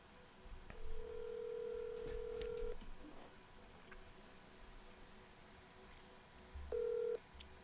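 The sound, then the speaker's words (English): Telephone dialing tones: a steady, mid-pitched electronic beep held for about two seconds, a stretch of faint hiss, then a second, shorter beep of the same pitch. No one speaks. “Let's call him.”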